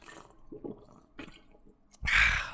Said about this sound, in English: okay, so drink some water.